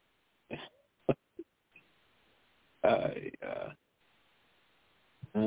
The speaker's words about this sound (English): I wish. I cut you off because I figured I'd give you time to cough.